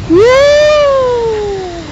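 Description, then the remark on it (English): A single drawn-out cat meow, fairly loud, rising at the start then slowly sliding down in pitch over about two seconds, with no talking. “Cat's walking away.”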